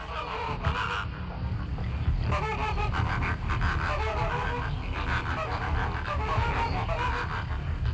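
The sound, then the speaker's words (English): A large flock of flamingos honks and gabbles continuously, dozens of nasal, goose-like calls overlapping into a loud, dense chorus with no pauses. “There is another iconic bird, that is the flamingo.”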